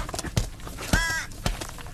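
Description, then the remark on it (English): A single harsh caw from an emaciated crow rings out, loud and brief, as a man tries to beat it with his bare hands, amid a few sharp knocks and scuffling thuds, with no voices. “Anyway, there's actually a horrible emaciated crow down there that he has to try and beat to death with his bare hands.”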